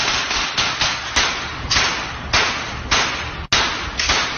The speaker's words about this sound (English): So a considerable amount of gunfire being aimed towards a target.